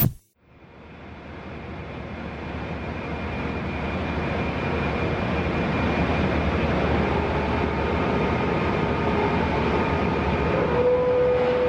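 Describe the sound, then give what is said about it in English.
Heavy machinery at the Charter Steel Plant in Saukville, Wisconsin, roars steadily and loudly as magnetic cranes scoop up scrap metal and dump it into massive hoppers, a dense industrial rumble with a thin whine rising near the end; no one speaks. “You're listening to the sound of American manufacturing at work.”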